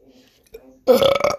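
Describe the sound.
A loud, drawn-out burp erupts after a moment of faint voice, rumbling with a gurgling, stuttering texture for about half a second.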